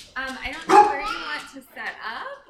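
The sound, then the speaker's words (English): A dog, Luna, the family dog at a home on the outskirts of East Palestine, barks and yips in a few short, sharp bursts mixed with whiny, high-pitched vocal sounds over about two seconds. “She lives on the outskirts of East Palestine with her husband and three sons, and their dog, Luna.”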